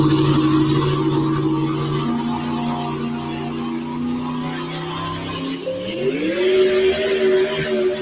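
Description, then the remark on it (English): A turbocharged engine with shrouded turbos, its exhaust routed up through the turbos instead of straight out the headers, drones steadily at a low, buzzing pitch, then revs up partway through, its tone climbing smoothly and holding higher, with a faint high whine running above the roar. “Exhaust going up through the turbos instead of coming right straight out the headers.”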